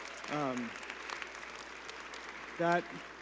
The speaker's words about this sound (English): Last thing is a really fun one, a really big one. We've had 48 baptisms in the last year. Let's applause for that.